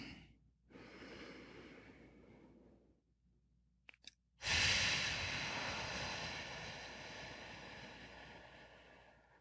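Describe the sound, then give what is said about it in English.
Slow, deep breaths: a soft airy breath, a pause with a couple of small clicks, then a long, loud, rushing breath that gradually fades. No talking. “I'm doing a lot of breathing.”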